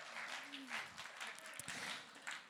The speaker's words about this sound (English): I think that needs an applause